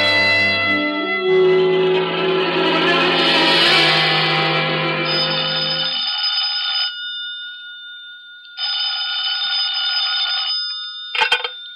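A telephone bell rings loudly: one long ring, a pause of silence, a second ring, then the brief start of another, with no one speaking.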